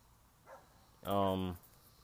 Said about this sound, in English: Why is there a dog barking?